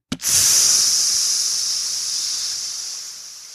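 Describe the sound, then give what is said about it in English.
A voice imitates a Coke can bursting in a mini fridge: a sharp pop followed by a long, steady, high-pitched hiss that slowly fades over about three seconds. “Did you guys know that Cokes explode in fridges?”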